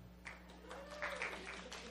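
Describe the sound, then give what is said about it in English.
A studio audience applauds to vote for ancient biblical wisdom in a steady wash of overlapping claps lasting a couple of seconds, fairly soft and even, with a low hum running underneath. “Let's hear a round of applause if you vote for ancient wisdom.”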